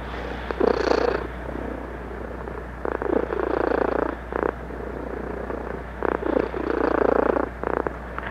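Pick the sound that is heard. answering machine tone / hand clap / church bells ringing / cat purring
cat purring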